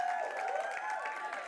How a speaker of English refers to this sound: So anyways, holler, whatever you want to do, clap it up, I don't care, it's all good, but welcome to Highlight Church.